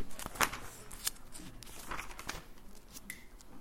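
Soft, crisp rustling of thin Bible pages being turned and flipped while someone looks for a page, with a few sharp crinkles and flicks at low volume, no talking.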